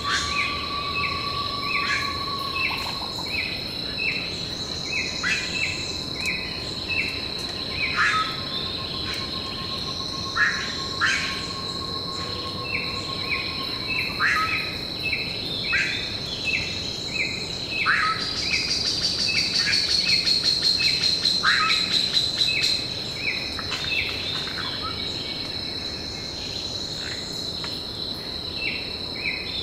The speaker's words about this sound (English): There are over 100 bird species in the area, including toucans, motmots, woodpeckers, flycatchers, ant birds, and manakins. Dan Grossman and I recorded this dawn chorus when we visited the falls a few years ago.